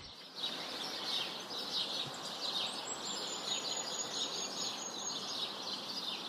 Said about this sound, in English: Well, let's play that bird song for you. This is some of the native birds just at the back of our house sit in Otahuhu in Auckland.